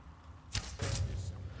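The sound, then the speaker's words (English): A video game arrow is loosed from a bow at an enemy while sneaking: a sharp release followed by a quick, airy whoosh, fairly loud, with no voices over it. “Lace this dude with an arrow.”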